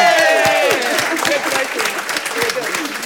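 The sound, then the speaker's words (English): Loud, steady audience applause, a dense crackle of many hands clapping throughout, with cheering voices and a brief whoop mixed in near the start, as the final round of applause at the close of a quiz event hosted by WORD Christchurch. “Final round of applause for”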